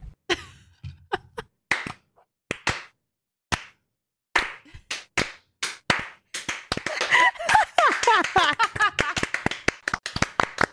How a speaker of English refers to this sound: If you do read this live, could you please stand up and clap for the standing ovation slow clap? So we're going to do that right now.